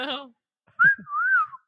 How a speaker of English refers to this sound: Good whistles. I'm losing my whistle. I'm usually not that good of a whistler.